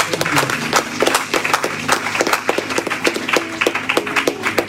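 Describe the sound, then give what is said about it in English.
A church audience during an altar call claps their hands together in a dense, uneven burst of sharp claps that keeps going steadily for several seconds, with low sustained tones humming underneath. “But if there's anyone, clap your hands for this, my brother.”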